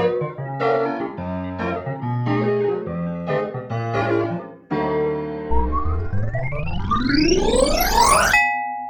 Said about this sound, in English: new mail notification.